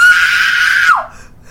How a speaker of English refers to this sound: Okay, I just had to scream a little bit